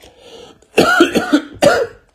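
A few harsh, chesty coughs burst out, a quick cluster followed by one more hacking cough after a short pause, preceded by a faint breathy rasp.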